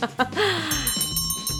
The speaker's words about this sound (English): Oh, and there's that beautiful opening bell.